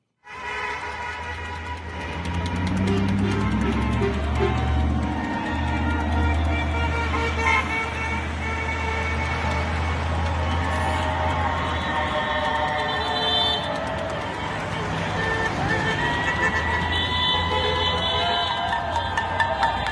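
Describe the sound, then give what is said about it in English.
The Freedom Convoy 2022 of protesting truckers honking on a street in Canada on a Sunday, on its trek from Vancouver toward Ottawa: many loud air horns blare together in long overlapping blasts over a deep engine rumble, sustained almost without pause and with no talking. “A convoy of truckers took to the streets of Canada on Sunday to protest.”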